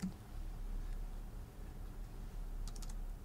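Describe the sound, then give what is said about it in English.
Quick typing on a new computer keyboard that works with two computers, entering a name search, a steady patter of soft clicks, ending in a brief burst of sharper, brighter keystrokes. Nobody talks over it. “So I'm going to switch here and do a search on the name Ahmed because it just jumped on me.”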